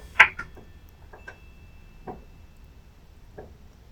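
Bells outside a door, pushed around by strong gusts of wind, clang at irregular intervals, a sharp bright strike followed by a few lighter knocks, with a thin ringing tone lingering between hits over a low rustling background.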